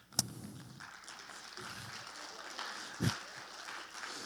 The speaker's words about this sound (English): Preachers love when you clap for them at the end. It's their favorite.